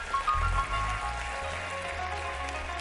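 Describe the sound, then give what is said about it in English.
An audience claps together for the Lord after a prayer, a dense, steady wash of many hands applauding at an even level for a few seconds, with no one speaking over it. “Get a Lord a hand clap.”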